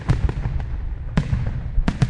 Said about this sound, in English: The 4th of July was always fun and exciting. Every year they went down to the ballpark where the city put on a fireworks display.